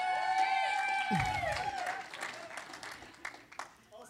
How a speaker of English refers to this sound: No, he's awesome. You can clap all day long for this guy. He's a man to be honored.